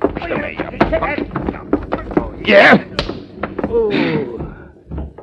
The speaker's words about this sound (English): Only I shouldn't have hit this guy so hard.